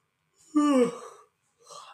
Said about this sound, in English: Gosh, excuse my yawning. I'm so sorry. I'm tired.